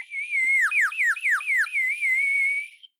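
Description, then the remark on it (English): A person whistles a clear, fairly loud warbling tune, with quick downward swoops in the middle before settling into a steady wavering note, no talking. “give me your best whistle.”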